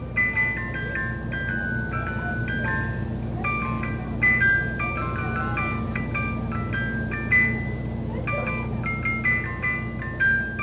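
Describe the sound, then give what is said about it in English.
An ice cream truck jingle plays a steady, tinkling electronic melody of repeating notes, running continuously at moderate volume over a low engine-like rumble, with no one speaking. “if an ice cream truck rolls by the front of my house, I've got my own gear.”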